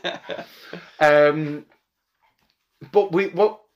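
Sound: dog whimpering and barking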